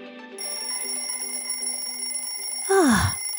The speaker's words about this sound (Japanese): 目覚まし時計が鳴っています。目覚まし時計です。朝ですから起きなければいけません。